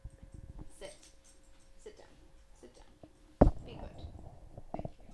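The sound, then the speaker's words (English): A small dog whimpers in short, thin, high-pitched whines while climbing on a computer, followed by a sudden thump and a stretch of shuffling, rustling movement. “The dog is just climbing on the computer.”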